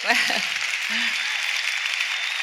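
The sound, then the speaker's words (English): Steady audience applause fills the whole stretch, a dense, even wash of clapping at constant loudness, with a couple of brief voice fragments poking through near the start. “Hold the applause. Hold the applause, because he got the math wrong.”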